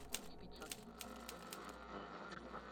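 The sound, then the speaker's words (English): Irregular, crisp mechanical clacks of typewriter keys strike one after another over a low steady hum, moderately quiet, with no voices. “He liked to be alone, to sit at his typewriter, to smoke his pipe, and to listen to his radio.”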